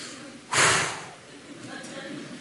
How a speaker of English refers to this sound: What do you keep breathing heavy for? I got an Apple Watch, tells me my heart rate is. It's about 130 right now, 130 beats per minute.